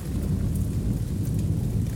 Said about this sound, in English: But about the time we got to the bottom of the mountain and hit the Oregon state line, it clouded up and began to rain.